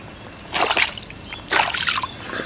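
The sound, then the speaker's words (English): Water sloshes in two moderately loud surges about a second apart, each a brief wet churn with a faint trickle between them, and no voices. “I want to join with my aquatic friends. Oh, I just love the water.”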